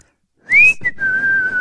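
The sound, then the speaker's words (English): A single clear whistle through pursed lips, rising into a bright held note, breaking briefly, then settling into a long steady tone, fairly loud with no talking. “You just put your lips together and blow.”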